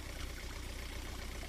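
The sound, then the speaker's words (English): A boat engine idles steadily as the boat heads upriver, a low throbbing rumble with a constant hiss layered on top, unchanging throughout, with no voices. “I am on a boat.”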